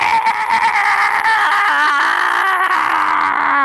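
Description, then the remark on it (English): A loud, harsh, monstrous screech of the creature Shia LaBeouf that wavers in pitch and never lets up, filling the entire few seconds with a strained, wailing shriek. “The light behind you casting your own shadows forward as you hear the terrible screeching of Shia LaBeouf.”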